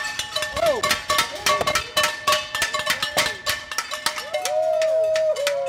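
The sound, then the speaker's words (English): A noisy crowd of neighbors, gathered outside at 7 o'clock, clangs the pans and noisemakers they use every night in a rapid, irregular barrage of loud metallic hits, with rising and falling whistles or shouts mixed into the din. “Soon enough at 7 o'clock, we head outside, where some very prompt neighbors have already gathered with pans and noisemakers they use every night.”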